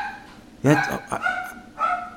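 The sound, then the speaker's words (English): A dog barks three times in quick, uneven succession, a sharp, loud first bark followed by shorter, yappier ones, with no talking over them. “Yeah, the dogs are going to join.”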